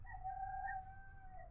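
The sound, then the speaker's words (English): A rooster crows in one long, sustained call with a steady, slightly nasal tone, heard clear over a low background rumble. “I'm going to call those roosters very soon. I'm getting very upset.”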